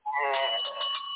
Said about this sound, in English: Yes, bring the bell on that.